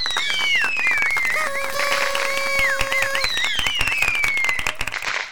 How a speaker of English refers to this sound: You know what? We haven't done a sound effect. We haven't done a round of applause in a while. Steve, this merits a round of applause.